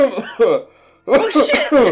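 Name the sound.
exaggerated coughing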